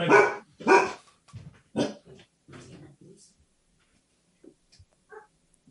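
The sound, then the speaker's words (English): The speaker's pet dog barks several times in quick, loud bursts, with a couple of fainter whimpers or yips trailing off afterward. “I'm talking about my dog here. Yeah, he wants the rights of dogs to be addressed in this conversation as well.”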